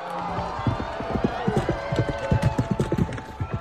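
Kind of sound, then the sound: animal, horse hooves galloping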